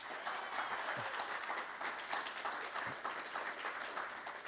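Sustained audience applause, a dense steady wash of many hands clapping at an even loudness throughout, with no voices standing out.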